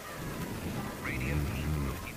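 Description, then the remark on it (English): A storm at an old lake house: steady rain hisses over a deep, rolling thunder rumble that fills the whole short stretch, loud, with a muffled voice briefly audible beneath the storm. “And now his radio show's gone off the air, and a storm has moved in.”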